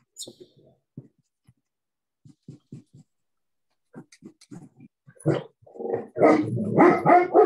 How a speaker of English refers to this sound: Ooh, who's got a dog? That's me. Sorry about that. I love dogs. I do too. She can bark at the wind sometimes, you know, and that's what she's doing right now. Calm down. It's okay, girl. She's a big German Shepherd.